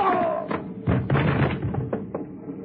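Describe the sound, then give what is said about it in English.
A series of dull thuds and knocks land at irregular intervals, like blows striking a body, as a man is knocked out, with a brief vocal sound at the very start. “Knock him out, will you?”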